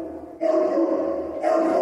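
A dog gives a drawn-out, two-part vocal bark that rises into a sustained utterance sounding like the word "reverb", loud, with no people talking.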